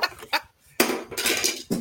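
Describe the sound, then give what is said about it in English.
Keys jingling in a few quick bursts, bright metallic clinks and rattles with a short pause, then a longer jangle that fades and picks up again briefly at the end. “Do you have jingle, jingle, jingle.”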